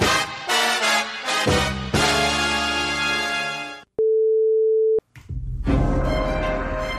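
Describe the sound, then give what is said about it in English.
A single steady electronic beep, a spoiler-alert marker telling listeners to jump ahead exactly 6 minutes, holds one pitch for about a second, cutting sharply through a gap in loud, busy spoiler music that resumes right after. “To avoid any spoilers, when you hear the beep, jump ahead exactly 6 minutes.”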